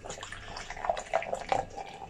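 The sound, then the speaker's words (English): Ghanaian beer pours steadily into a glass, a continuous splashing gurgle with brief bubbling bursts and fizz, no voices over it. “I'll pour a bit of this Ghanaian on it for you as well.”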